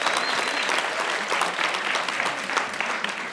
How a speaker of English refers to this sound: Give a round of applause for everyone that participated.